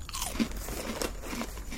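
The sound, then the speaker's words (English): Crisp crunching of someone chewing a crunchy snack, with repeated bites and grinding across the whole stretch, no talking, fairly quiet overall. “Sorry about all the chewing noises.”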